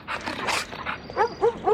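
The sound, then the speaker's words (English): A dog in a film scene barks in three short, high-pitched yaps in quick succession, following a brief burst of rushing noise, moderately loud with no talking. “You already know something's gonna happen with the dog because they make like a really big thing about They make this a point.”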